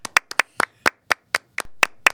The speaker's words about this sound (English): Church clap.